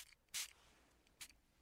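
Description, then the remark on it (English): Two quick, airy spritzes from a face mist spray bottle, the first crisp and fairly loud, the second a little softer about a second later, with quiet room tone between and no talking. “Give that a spray.”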